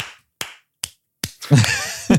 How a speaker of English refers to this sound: Everybody clap your hands if you have seen Bob's Burgers.